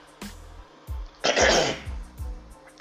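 Someone clears their throat, a rough, raspy burst in the middle flanked by a few short guttural grunts and hums, with no speech.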